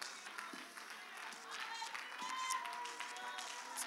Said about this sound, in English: Why don't we give that Lord one more great hand clap of praise all over this house.